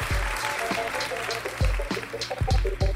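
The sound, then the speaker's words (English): Audience applause for a DJ and Chris Hayes, a steady, crackling wash layered over loud music with a booming bass beat and sustained tones. No one speaks. “All right, let's give a big round of applause to …, Chris Hayes.”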